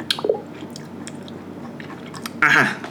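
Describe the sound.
Wet chewing and squishing mouth sounds from someone eating while talking, a short burst at the start and a louder, smacking stretch near the end, with a faint voice murmuring through it.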